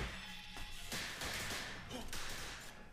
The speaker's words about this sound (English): Oh, gunfire. That's always good in a store.